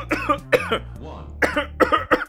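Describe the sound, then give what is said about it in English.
A man's fit of harsh coughing as he panics: five or six loud bursts in quick irregular succession, with a raspy, wheezing breath in the middle and no speech. “He like throws his wallet at you as he's like coughing and freaking out.”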